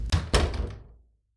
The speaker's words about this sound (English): It was all I heard as a door mercifully closed behind me, shutting out the aggravation.